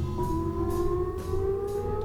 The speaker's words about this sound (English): It's almost like a nuclear raid sound, isn't it? That's how I knew that I Love Lucy was coming on when I was a kid.